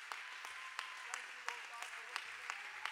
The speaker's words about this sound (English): Give the Lord one more hand clap of praise before you're seated.